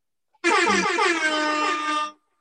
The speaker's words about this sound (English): Yeah, that deserved an air horn right there, what you just said.